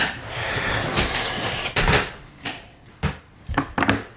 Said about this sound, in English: With an exceedingly creaky table. Look, it happens.